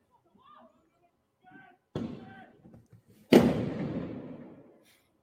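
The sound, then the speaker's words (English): Two sharp firework bangs during bonfire night clashes with police go off a second or so apart, the second louder, each trailing a rumbling echo, with faint murmuring voices in the background. “And, you know, those fireworks, really in and of themselves don't hurt anyone unless they're fired directly at a person, like a police officer.”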